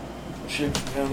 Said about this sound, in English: Shift down the chair.